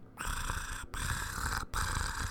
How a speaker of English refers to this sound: This week's episode of Not a Couple was recorded in front of a live studio audience of one cat. Purr, meow. Hi, Eliza. You're so soft and beautiful.